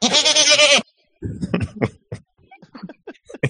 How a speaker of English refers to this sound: That goat on full blast is hilarious. I left it loud on purpose, but anyway.